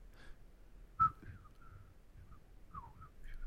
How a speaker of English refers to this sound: I do this thing that Jessica hates, which is a quiet whistle